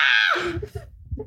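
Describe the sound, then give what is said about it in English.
A voice lets out a brief, shrill mock scream, imitating screaming from downstairs, that quickly slides downward in pitch, trailing off into low, muffled vocal noises. “You hear screaming from downstairs.”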